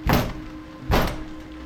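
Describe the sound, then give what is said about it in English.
Two heavy, booming thumps as someone pounds on a door during a storm, spaced just under a second apart, each ringing out briefly over a low steady hum, with no voices. “Okay, that wasn't the shutters. It's the door.”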